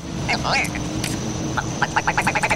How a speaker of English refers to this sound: the old man that takes care of Michael, his parrot, Tookie, I think is its name, it makes the creepiest noises. I've never heard a parrot make those noises. And I'm like, that is freaky.